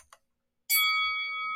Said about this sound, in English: I literally almost forgot to ring the bell. Like, I knew what the round was.